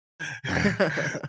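A voice imitates heavy, labored breathing: a short breath, a brief pause, then a longer drawn-out exhale with a raspy, groaning edge, fairly loud.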